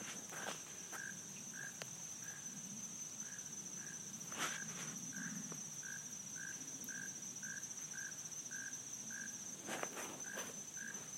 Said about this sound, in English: Hopefully you guys can hear that frog in the background. I don't know if you can. There's all sorts of things, little things chirping. Insects, frogs. Mosquitoes are buzzing me.